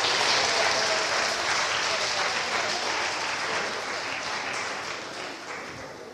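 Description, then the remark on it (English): A crowd claps steadily in a dense, sustained wash of applause that holds strong for several seconds, then slowly tapers off toward the end. No one speaks over it. “Can we have another round of applause for all those?”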